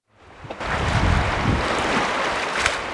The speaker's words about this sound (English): sitting on the yellow rubber edge of a huge inflatable raft as the boat splashes through the Yampa River. We're flying along. There's like no way in the world you could run this fast along the side of the river.